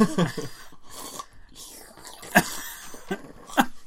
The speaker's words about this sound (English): Very important for scientific purposes that you slurp as loud as you can. That's really loud with those slurps.